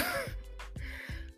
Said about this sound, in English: I promise I'm not sick, y'all. I promise. But I hate that I keep sniffing.